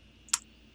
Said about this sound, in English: he's loud on the keyboard.